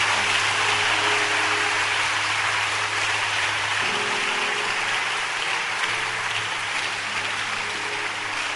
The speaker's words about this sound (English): Wow. Clap your hands.